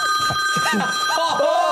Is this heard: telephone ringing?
yes